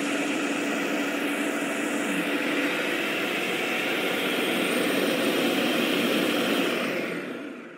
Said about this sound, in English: And just to taste, I add a little extra into the blender. And then we just get it going. Blend it a little bit longer.